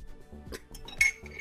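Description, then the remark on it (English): Glasses clink together in a toast, a few quick bright taps followed by one louder clink that rings out briefly, with no talking. “Cheers, guys. Yeah. Cheers, like, everyone. Cheers. Cheers.”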